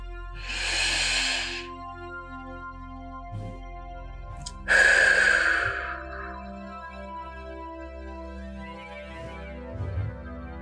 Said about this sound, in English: Let's take a deep breath all together and let it out.